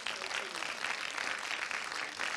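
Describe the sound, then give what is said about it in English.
An audience claps their hands in praise to the Lord, many hands making a dense, steady wash of applause that holds at an even level for the whole stretch, with no clear voices rising above it. “Come on, let's clap our hands one more time to the Lord.”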